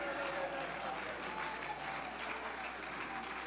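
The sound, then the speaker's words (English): A church audience claps hands after a prayer, in a steady, dense wash of applause that stays loud and even throughout, with a faint murmur of voices mixed underneath. “Clap your hands all over this place.”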